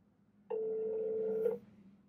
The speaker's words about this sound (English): So we're ringing him right now.